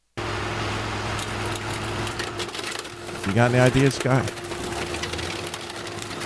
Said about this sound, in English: I think it's a Caterpillar tractor or a bulldozer. There's one definitely of those involved in this. You are exactly right.